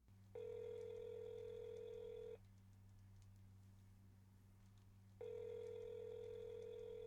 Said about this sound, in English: We're going to use the telephone number for a phone booth in the UK within the World Showcase at Epcot. And we're going to start a conversation with a Disney guest.